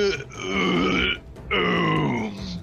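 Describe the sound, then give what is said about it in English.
A voice imitates the Arcane Dominator, a monster in a game, heaving with two long, strained, guttural grunts, each about a second, loud and rough with a low growling tone and a brief pause between them. “And with that, the Dominator heaves.”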